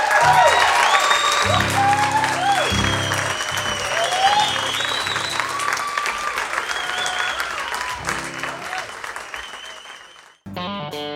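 Loud, sustained applause from a large crowd, dense clapping with scattered whoops and cheers, carrying on for about ten seconds before cutting off abruptly into a short burst of music.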